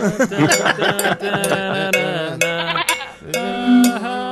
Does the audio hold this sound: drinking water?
no